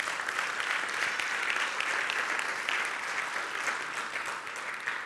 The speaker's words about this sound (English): Come on, can you give him a great round of applause?